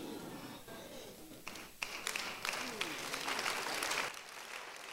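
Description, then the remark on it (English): A church audience breaks into applause during a sermon. A few scattered claps grow into dense, steady clapping for a couple of seconds, then fade abruptly, with a faint voice murmuring underneath. “The Lord bless those of you who are clapping and give you a double portion of his favor.”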